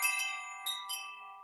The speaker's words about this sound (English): Ooh, the wind chimes.